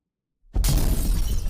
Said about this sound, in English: I realize that's an explosion, but you know, everyone has a lightning round, so I thought what would make mine different? What makes mine different is we have explosions.